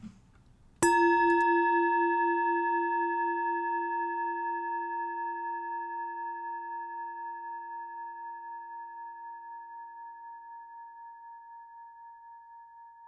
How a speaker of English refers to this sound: So please take a breath, relax, listen to the chime, and as it shades off into silence, just join with me in 30 seconds of silence.